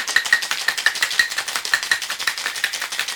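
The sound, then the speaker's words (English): Ice rattles hard inside a cocktail shaker as a drink of amaretto, cherry liqueur, dark creme de cacao and half and half is shaken to chill and froth it. A fast, steady run of bright clattering knocks repeats several times a second, with no voices over it. “Put your lid on your shaker and give this a good shake until it's thoroughly chilled and frothed.”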